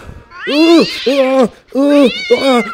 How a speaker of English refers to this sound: Somebody left a cat in the studio. Is this anybody's cat? Oh, you're a cute little thing, aren't you?